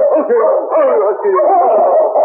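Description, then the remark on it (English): A sled dog team howls and yelps together in a loud chorus, their wavering cries overlapping continuously for a couple of seconds with no one speaking, as they reach the well-packed main street of Portage City. “Both the sergeant and the dogs were looking forward to food and sleep.”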